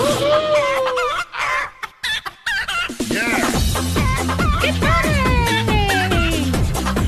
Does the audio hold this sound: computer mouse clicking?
no